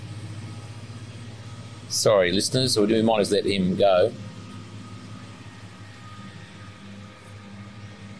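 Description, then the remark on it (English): A Kubota tractor engine drones steadily as it drives laps past, a low rumbling hum that runs the whole time, with a person speaking briefly over it partway through. “Now there's a bloody tractor.”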